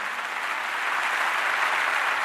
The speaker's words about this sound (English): Thunderous applause going on.